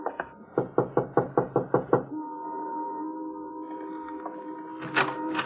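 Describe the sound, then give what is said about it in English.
Firm knocking on the door of a white single-frame house in a rundown section of a city: a couple of raps, then a quick, evenly spaced run of about eight more, followed by a long, steady creaking tone as the knocking stops. “Want to knock? Sure.”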